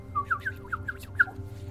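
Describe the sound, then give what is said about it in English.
A voice imitates the twitter of Lyra, a bird character in a role-playing game: about six quick, high chirps in a bouncy rhythm, moderately loud, with no talking around them. “She twitters.”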